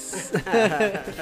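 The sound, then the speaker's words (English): A voice imitates a balloon losing air: a wavering, squeaky, pitched squeal lasting about a second, rising and dipping in pitch at a moderate volume. “It sounded like a balloon was losing air.”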